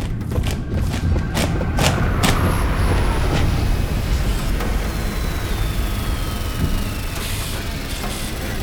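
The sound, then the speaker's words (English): A spaceship, not a Concord ship, arrives and descends toward a stage with a deep, steady roaring rumble, sharp clanking thumps in the first seconds, and thin high-pitched whines gliding slowly downward over the constant drone. “A ship has just appeared.”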